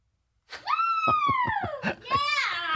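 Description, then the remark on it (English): A woman lets out a loud, sustained high-pitched scream that rises, wavers with a few shaky breaks, then dips before surging again into a second shrill, intense cry. “I always try to catch them off guard, see how long it takes them to get … screaming there”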